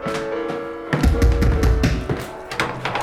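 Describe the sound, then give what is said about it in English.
Three sharp knocks on a door, unevenly spaced, land over a steady background of sustained musical tones. The raps are fairly loud, and no one speaks. “I have been knocking forever. Three knocks is not forever,”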